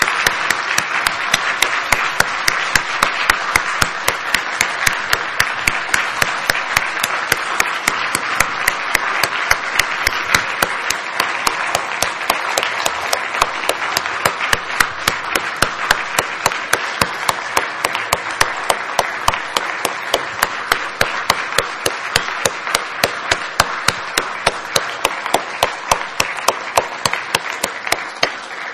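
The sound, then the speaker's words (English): A sustained round of applause from a large church audience showing appreciation for its elders, dense overlapping clapping that stays loud and steady for nearly thirty seconds with no voices standing out. “Now again, in our society, church, it is typical for people to show their appreciation to others by giving a round of applause.”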